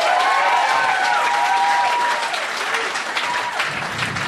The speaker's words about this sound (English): Feel that little breeze from that applause. Isn't that nice? It's real nice.